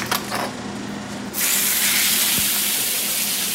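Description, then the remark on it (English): Steak is chopped on a hot grill with onions mixed in for a cheesesteak in the back of a restaurant in South Philadelphia: a few sharp chopping knocks at the start before a loud, steady hiss of frying swells up and continues. No one speaks. “Yeah, I'm just chopping the steak on the grill right now. And mixing the onions in as I go.”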